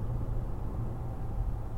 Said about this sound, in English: And we are at 70 on the freeway. And you can hear how quiet the truck is.